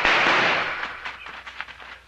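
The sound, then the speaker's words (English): Gunfire from a stagecoach driver shooting at holdup men: one loud, sharp blast whose crackling tail fades out, followed by a scattered run of quicker, fainter cracks. No one speaks. “That driver's a shooting fool.”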